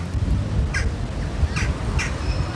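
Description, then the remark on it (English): A bird, likely a crow, gives three harsh cawing calls outside near the main train station of a Dutch city in the morning, spaced unevenly over steady low outdoor rumble and background hum. “One of the loudest noises I could hear was a bird.”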